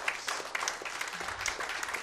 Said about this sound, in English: Come on, give the Lord a hand clap of praise if you believe that.